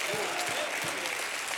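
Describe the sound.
An audience breaks into steady, dense applause, many hands clapping together at a constant level, with a wash of voices calling out beneath the clapping, giving God a hand clap and a shout of praise.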